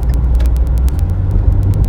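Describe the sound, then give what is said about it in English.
A car engine drones low, its pitch wavering and shifting unevenly as the RPMs jump, with a fast, regular ticking running over the rumble throughout. “Hey, my RPMs are jumping a little bit much right now.”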